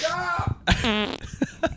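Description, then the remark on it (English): A man's sudden loud sneeze bursts out with a sharp, noisy onset and a voiced, tonal tail, spraying the table by his computer, set among excited voices and exclamations before and after. “He sneezed”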